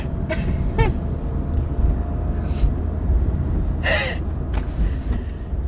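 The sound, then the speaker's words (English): A sudden sneeze bursts out partway through, preceded by a couple of quick breathy inhales, all set against a steady, heavy low rumble like traffic or a passing train. “It makes me want to sneeze.”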